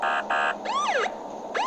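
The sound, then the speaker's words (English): A loud police siren alternates between steady electronic blasts and rising-and-falling whooping sweeps, repeating rapidly with no voices present, as police pull over a truck towing a trailer and a boat. “It looks like we're being pulled over by the police.”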